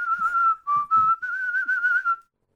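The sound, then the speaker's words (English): Someone whistles a short tune, a clear, steady melodic line with a few brief breaks between phrases, ending abruptly into silence. “Yeah, and you wouldn't see him, but you just hear the whistle.”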